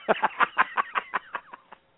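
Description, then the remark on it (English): A goose call blown in a quick run of about nine short, reedy honks and clucks, steady in rhythm and tapering off toward the end, with no talking. “Yeah, but see, how many thousands of goose calls have you tuned?”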